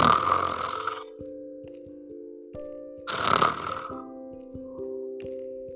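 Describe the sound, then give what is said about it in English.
Soft snoring, two slow breaths about three seconds apart, each a breathy rasp trailing into a low, droning hum. No one speaks. “the twins were still snoring softly.”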